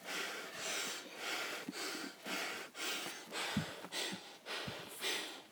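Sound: heavy breathing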